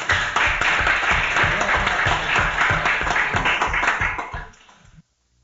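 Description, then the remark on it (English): An audience applauds the founders and officers of an organization, a dense wash of many hands clapping with a dull, band-limited old-recording tone, sustained for about four seconds before tapering off and stopping. “Thank you, and applause for them.”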